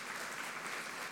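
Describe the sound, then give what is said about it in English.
A crowd claps hands together after a prayer in a dense, steady patter of many overlapping claps, bright and sustained for about a second with no voices. “Well, first of all, you can clap your hands. I heard it.”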